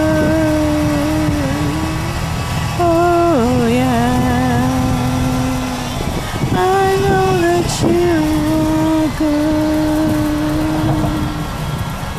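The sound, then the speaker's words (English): A noisy car engine runs continuously, its loud droning hum carrying a whiny tone that dips and rises in pitch a few times, with no one talking; the car has mechanical problems. “I know it's a little bit loud in the background because my car has some problems, and hopefully when I take it next Thursday, Casey can fix it for me and it'll be reasonable.”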